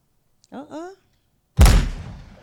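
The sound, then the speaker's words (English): A brief voiced sound, then a single loud gunshot sound effect played from a soundboard bursts in sharp, its boom trailing off in a rumbling decay over the next second. “Is this the gunshot? Yeah. I think this is the gunshot.”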